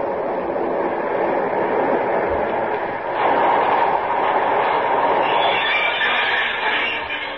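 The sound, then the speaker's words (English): A local train of six cars rumbles steadily into a station, a broad, constant roar of rolling wheels and machinery that grows slightly brighter and louder midway, with faint higher squeals near the end and no voices. “Here comes the local.”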